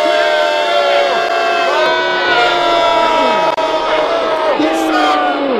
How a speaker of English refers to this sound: We want a big boo here for when you see these loser Giant fans coming into the stadium. And here we go. Everybody together, even if you're in your cars, boo. Boo!